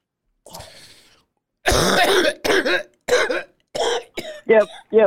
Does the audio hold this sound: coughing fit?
yes